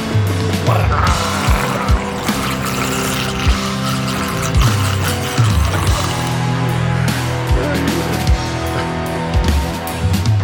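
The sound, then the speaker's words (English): A voice growls through a mouthful of water, making a loud, continuous low gurgling rumble with bubbling bursts that lasts for about ten seconds. “Oh, I gotta do the water growl.”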